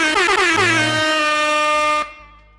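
A single loud, sustained air horn blast with a harsh, brassy tone that holds steady for about two seconds before cutting off abruptly, leaving a faint fading tail.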